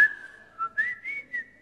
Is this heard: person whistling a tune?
yes